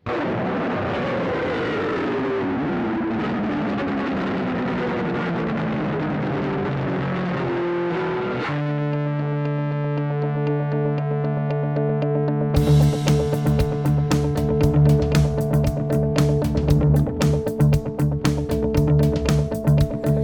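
A rough song demo plays back, opening with swooping, gliding synth tones, then settling into steady sustained bass notes before a busy, driving beat kicks in. No one talks over it.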